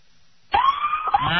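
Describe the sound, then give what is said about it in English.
After a brief quiet moment, a police car siren, sounded from a law enforcement officer's car and recorded with a phone held out the window, bursts on loudly with a harsh, high, wailing tone that wavers slightly in pitch for under a second. “I can hit the horn if you want, or the siren real quick.”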